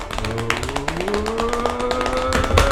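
A quick, uneven flurry of hands banging on a table as a drum roll before a quiz's final round bonus question, sharp knocks tumbling together for nearly three seconds, with a steady tone slowly rising in pitch underneath.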